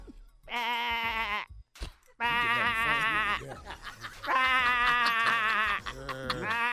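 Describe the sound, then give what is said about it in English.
A person imitates a sheep, letting out three loud, wavering bleats, each about a second long with short gaps between, followed by a shorter trailing bleat. “do a sheep.”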